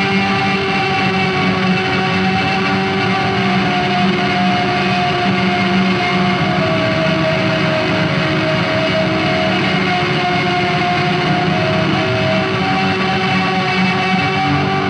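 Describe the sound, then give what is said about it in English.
A thick instrumental drone, played through distortion with no reverb, holds steadily for the whole stretch, its sustained tones wavering in a warbly, chorus-like shimmer with dense buzzing harmonics and no voices. “And so when you throw it on distortion and do this, you get like a cool like.”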